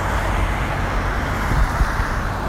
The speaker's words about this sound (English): Like, look at that. A guy just comes cruising around, speeding around the roundabout.